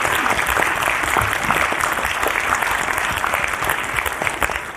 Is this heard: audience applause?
yes